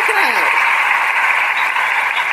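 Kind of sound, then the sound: sound effect, hand claps sound effect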